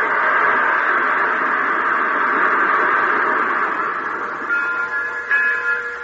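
A train locomotive rumbles steadily and loudly, a continuous mechanical roar, with a thin high-pitched squeal or whistle tone emerging near the end. No voices.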